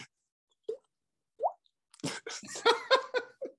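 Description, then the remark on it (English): A voice imitates a raindrop with two short, rising mouth plops separated by a pause, followed by a burst of laughter and chatter. “I can make a few things, but Yes, please. A raindrop noise.”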